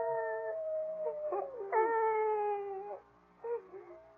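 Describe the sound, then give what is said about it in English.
A coyote howls outside, heard through a window, in long, wavering tonal cries, rising and sliding, with a brief pause before a shorter final wail. Moderately loud, with no talking. “No, I think it's that howling coyote that's bothering you.”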